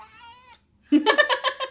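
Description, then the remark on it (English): A long, tall male cat lets out a thin, drawn-out cry, falls silent for a moment, then bursts into a loud, wavering yowl, its voice rising and falling in harsh pulses. “He's screamy boy. Cat.”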